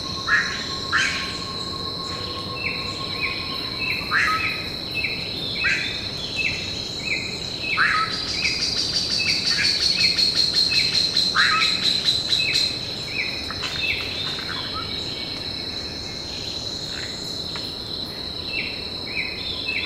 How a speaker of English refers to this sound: Dan Grossman and I recorded this dawn chorus when we visited the falls a few years ago.